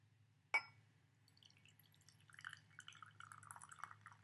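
A sharp clink, then tea pours steadily into a cup, a close, continuous trickling stream that grows fuller over a few seconds, with a low hum underneath.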